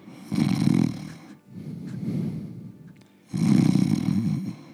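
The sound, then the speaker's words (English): A voice imitates the snoring of someone asleep in a room behind a door: two loud, rattling snorts with a softer, drawn-out wheezing breath between them, in a slow rhythm with no talking. “Safely assuming that someone's sleeping, I'm going to open the door.”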